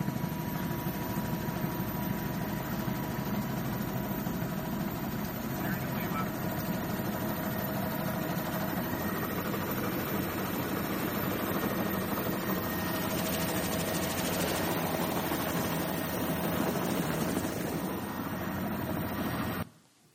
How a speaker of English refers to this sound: Anytime a helicopter shows up, it's a big deal and filled with anticipation and excitement.